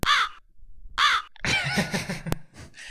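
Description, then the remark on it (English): Crows caw outdoors: two harsh, separate caws about a second apart, then a longer ragged burst of overlapping cawing, fairly loud, with a brief sharp click near the end. “Oh, crows? Oh yeah, you're right.”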